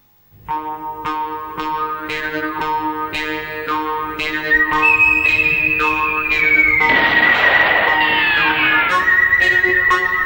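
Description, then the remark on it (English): A clear whistled melody from the opening theme of a spaghetti western film enters partway through, gliding and sustained above a steady, rhythmic instrumental backing with repeated plucked notes, growing fuller and louder toward the end. “Loves his whistling. He really does.”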